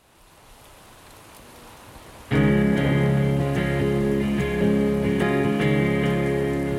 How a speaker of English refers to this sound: On the last morning, it rains as hard as I've ever seen.